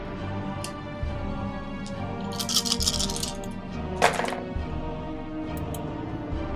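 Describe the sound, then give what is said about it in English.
A rattling clatter of many dice rolled for damage, totalling 26 points, tumbling across a hard surface, a scattered burst of small clicks followed by a second short, louder clatter, against a low background hum. “That sounded like a lot of dice to count up.”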